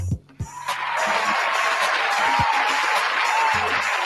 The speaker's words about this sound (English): My apologies. We got to hit you with the claps again.